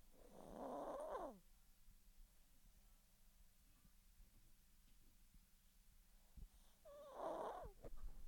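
A dog snoring softly, two rasping breaths several seconds apart, with a low steady hum and quiet stillness in between; no one speaks.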